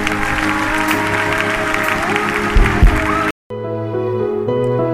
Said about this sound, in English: Clap your hands if you can.